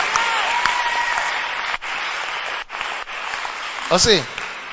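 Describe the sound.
An audience claps steadily in a dense, continuous wash of applause that briefly dips a couple of times, with a voice rising over it near the end.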